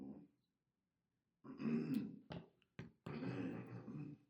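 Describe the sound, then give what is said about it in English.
A person clears their throat several times, fairly loud: a long rasping burst, two quick sharp catches, then another drawn-out gravelly clearing after a short silence. “Do y'all got something to clear my throat?”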